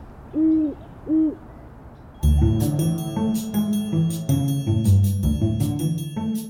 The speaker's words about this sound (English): Now, besides swans, there are a lot of different birds at the Palace of Fine Arts. Of course, there's seagulls. We've got some horned owls in there, and I won't see them normally. You might hear them.